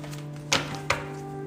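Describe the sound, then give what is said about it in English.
Tarot cards being handled during a shuffle: two short, crisp taps about half a second apart, set against a steady low electrical hum with no talking. “Let's see. Shuffling.”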